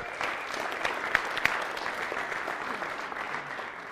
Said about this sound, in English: Will you give her a round of applause?